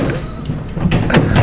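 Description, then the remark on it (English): A door is pulled open and shut with a couple of quick, fairly loud thuds, over a steady rumble of room noise and faint background voices. “Can you get the door real quick? They better not be. Open the door real quick.”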